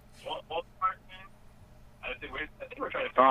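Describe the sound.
Tinny voices play back through a phone speaker with a slight delay, coming in short bursts separated by brief pauses, fairly quiet over a low background hum.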